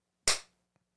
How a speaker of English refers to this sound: You guys want to do a clap? Okay.